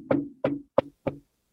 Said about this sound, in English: Knocking on the door. Just a quick...